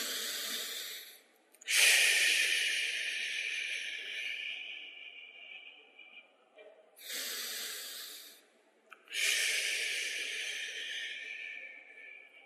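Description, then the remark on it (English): A crowd breathing together in long, slow unison breaths, in through the nose and out with a 'shh', each rush of air swelling in and fading out, with short pauses between and no talking. “Isn't that kind of cool, hearing everybody breathe together?”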